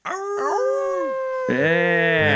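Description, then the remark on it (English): A loud, drawn-out howl wavers and slides downward in pitch, then a second, brighter and more strained howl swells in right after, sustained, with no talking. “I wish I could do a good howl to bring this on.”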